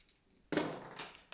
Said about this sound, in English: I dropped my dice on the floor. Oh god, that was a really good roll too. I'm gonna roll it again, even though, because I dropped it.